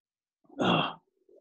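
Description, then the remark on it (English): One short, forceful nose blow, a breathy, noisy honk lasting about half a second, followed by a faint rustle; a person with the flu blowing their nose because they could not breathe. “Did you blow your nose? Yeah, I had to. Couldn't breathe.”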